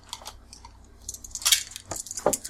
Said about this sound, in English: Yeah, so everyone's rolling initiative. That is taking your initiative rating, rolling that many dice.